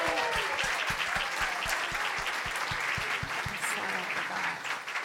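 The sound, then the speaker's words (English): An audience bursts into steady applause, a dense wash of many hands clapping together, with a rhythmic beat of unison claps under the crowd noise that fades slightly toward the end. “It would be just fine if everybody went yay or yahoo or clapped or something like that.”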